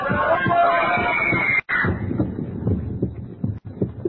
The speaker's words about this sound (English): First, the voices echoing in my ears, the fragments of speech about a concert, are the same voices I heard in that crowd, rising again and again to the climax of a woman's scream.